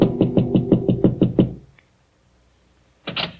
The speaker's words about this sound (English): Then as he prepares a drink, there is a soft knock at his door.